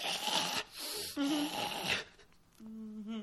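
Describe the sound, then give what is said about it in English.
A person imitates raspy, snorting breathing, in through the nose and out through the mouth: several harsh, noisy breaths with a hacking, throat-clearing exhale, followed by a brief low voiced grunt at the end. “Because he's, like, breathing through his nose and then out through his mouth. And when he breathes out through his mouth, it sounds like he's hacking up a loogie.”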